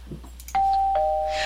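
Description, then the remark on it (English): A doorbell rings with two bright, sustained chime tones, the first note struck and held, then a slightly lower second note ringing on over it with no one speaking. “Who's that at the door?”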